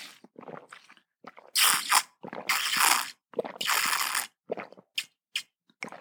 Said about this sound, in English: I'm gonna take a sip of my water now. You should too.